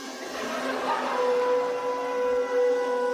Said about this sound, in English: So the people shouted. And the trumpets were blown.